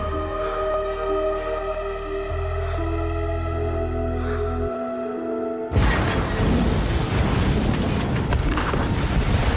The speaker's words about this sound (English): Right there at the exact moment of the explosion, we see Elvis going to throw his arm up and then a shot of Hitler's hand over the crowd.